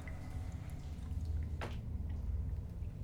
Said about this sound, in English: And now he seems to be dripping extra water from his form.